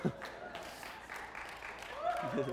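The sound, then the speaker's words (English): An audience applauds a pastor steadily during a sermon, a dense wash of clapping heard at moderate volume, while a man's voice speaks over it toward the end. “Clap for the weak pastor.”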